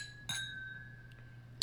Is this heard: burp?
no